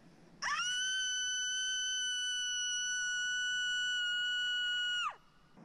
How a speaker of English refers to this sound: I will continue screaming. Would you like that? Because I'm actually finding it really, really relaxing.